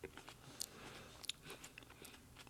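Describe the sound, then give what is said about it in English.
Crunching as someone bites into crisp food and chews, with sharp brittle cracks at irregular intervals over a quiet background; no one speaks. “I'm taking a bite out of it. It's very crunchy.”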